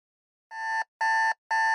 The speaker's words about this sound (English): When MD's alarm buzzed at 4 a.m., Chloe was already awake and out of bed.